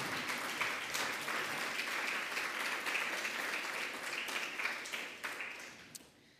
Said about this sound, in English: Please really applaud Touriel for.